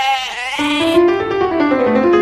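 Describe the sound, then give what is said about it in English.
A sheep bleats loudly in one long, wavering cry that stretches for about two seconds, with no other sounds or voices around it. “We have a lot of sheep.”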